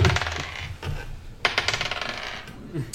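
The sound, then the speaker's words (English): A small die, rolled for initiative in a tabletop role-playing game, clatters and tumbles across a hard tabletop, a sharp strike followed by a rapid series of fading bounces and skitters, fairly loud, with no talking. “That dice is rolling well for you.”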